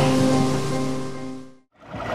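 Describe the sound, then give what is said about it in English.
A small boat's steady motor drone hums over rushing river water as it approaches the city of Sacramento, fading and briefly cutting to near silence as the engines are turned off, before the splash and wash of river water return, loud, with no talking. “We're going to turn our engines off, and we'll see which way the river takes us. Our small boat is approaching our final destination in the city of Sacramento.”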